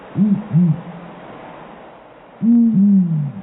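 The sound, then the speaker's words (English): A male and female pair of the world's biggest owls give deep, resonant hoots in two bursts. First come a pair of quick low calls, then a pause, then a longer overlapping run as the female answers the male at once in a tightly timed duet, clear. “It's so synchronized that most people that hear it assume it's one bird.”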